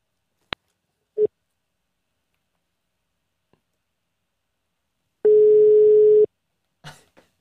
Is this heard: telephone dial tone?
yes